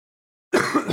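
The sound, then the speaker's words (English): A single loud cough bursts in abruptly after a moment of silence, rough and throaty, trailing on for about half a second. “That's a cough to kill time.”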